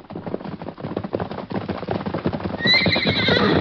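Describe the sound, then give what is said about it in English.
Rapid hoofbeats pound as Silver, a big horse that has broken loose, gallops, the thudding rhythm steady throughout, then a loud, shrill whinny rises over the running near the end. “Why, it's Silver. Look at that horse run.”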